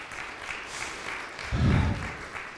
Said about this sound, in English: Can we put our hands together and applaud the Lord Jesus Christ on that?